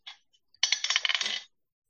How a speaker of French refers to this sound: Il faut jeter, on systématiquement jeter 2 dés parce qu'on a l'avantage, hein. Non, c'est moi qui quand je vous attaque. Non, toi tu jettes pas 2 dés. C'est moi qui quand je vous attaque, je lance 2 dés, je prends le plus mauvais.